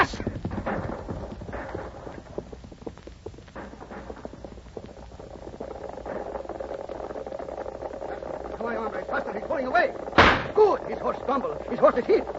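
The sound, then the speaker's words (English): A horse carrying a fleeing rider toward Monterey gallops hard, hooves pounding in a steady, rapid rhythm throughout, with a sharper, louder thud near the end over a busy background. “The horse is still running.”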